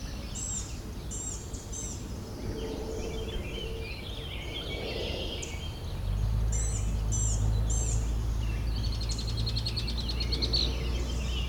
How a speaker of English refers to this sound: Our red-winged blackbird.